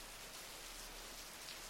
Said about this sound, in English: It is dawn in Askew, and it's still raining, and we are lost.